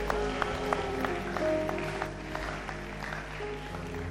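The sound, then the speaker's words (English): An audience claps their hands together, a dense, steady patter of many hands filling the room at moderate volume for several seconds, with no voices standing out. “Clap your hands and say a big amen.”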